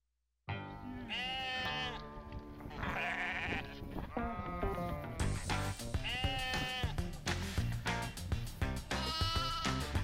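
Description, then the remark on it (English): Sheep bleat repeatedly and loudly, wavering calls overlapping one another in a steady, busy chorus that fills the whole stretch after a brief silent start. “I have a video to show you of a sheep.”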